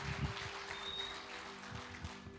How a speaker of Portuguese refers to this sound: Dê um aplauso à sua palavra.